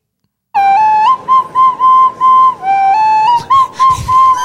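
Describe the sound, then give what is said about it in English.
A small recorder plays a simple, steady melody of held, breathy high notes that step up and down with short pauses between them. No voices are heard. “He's playing a little recorder.”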